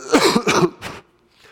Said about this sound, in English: Excuse me if I cough for a second here.